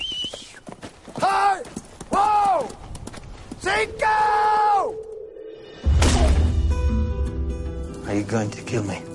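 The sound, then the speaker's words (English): A horse's hooves clip-clop in a quick, rhythmic run, loud, mixed with drawn-out voice-like calls and a burst of rumbling noise partway through. “My entire future ran off of that horse.”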